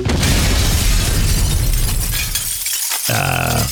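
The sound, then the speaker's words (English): A loud shattering explosion as the Shatter spell is cast erupts with a dense burst of crashing, breaking debris that rumbles and tapers for a few seconds before a brief ringing tail. “Celine is going to start walking to the left, and she's going to look back at everyone and say, ladies first, tip her hat, turn back into Jules, and step into the light and cast Shatter.”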